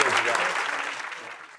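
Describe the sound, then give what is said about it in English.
Audience applause fills the short stretch, a dense wash of clapping hands that starts strong and gradually thins out and fades over about a second and a half. “Give Aubrey a round of applause.”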